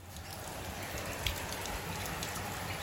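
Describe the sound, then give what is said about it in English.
Heavy rain pours down in St Kilda in a steady, dense hiss with constant patter across the whole stretch, one slightly louder splash near the middle, and no voices. “Biblical rain today.”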